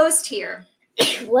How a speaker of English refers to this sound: Bless you. Bless you. Yeah. Thank you. We're dealing with allergies over here, guys.